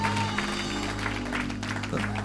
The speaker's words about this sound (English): Come on, one more hand clap and shout to the Lord.